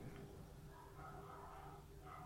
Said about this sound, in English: Bloody, can you hear all those dogs? Woof, woof, woof.